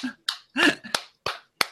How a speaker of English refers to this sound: Give it up, everyone. Plays sound effect of applause.